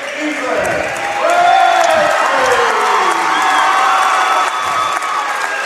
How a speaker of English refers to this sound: And you can tell the round of applause that came forth from the large crowd here at the Coach Floyd Eby Gymnasium. The cheers were for Ethan Crabtree.